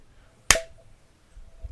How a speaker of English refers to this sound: All right, so we have to clap now. Clap.